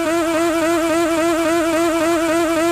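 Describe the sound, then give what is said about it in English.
A car engine cranks steadily as a thief tries to start the car, blocked by the Arikar Injalock 2 Starter Prevention Lockup; a loud, continuous mechanical whine with a slight rhythmic wobble. It never catches and fires up. No voices are heard. “If Freddy Felon insists on trying to start your car for a clean getaway, he'll encounter Arikar's new Injalock 2 Starter Prevention Lockup.”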